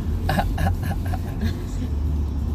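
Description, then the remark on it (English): A car engine rumbles steadily, with a series of short revving bursts in the first second and a half before settling back to a low, constant drone. “Let's see if this thing does have balls after all.”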